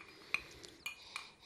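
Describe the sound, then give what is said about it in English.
Ice cubes swirled in a glass, giving four or five bright, ringing clinks at an uneven pace over a soft background hiss. No one speaks. “All right, now we have some ice cubes. Doing the same thing, swirl it around.”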